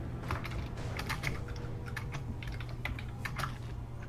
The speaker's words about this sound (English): I can hear you, destroying your keyboard. I'm not destroying... That's you. That's not me. I'm not even touching my keyboard.